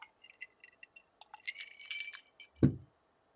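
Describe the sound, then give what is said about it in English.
Ice cubes clink against a drinking glass as someone takes a sip, in a quick, irregular run of bright taps that build into a busier jangle, then end with a single dull, low thump. “And with that question, it deserves a sippy sip with that beautiful ice clinking against the glass.”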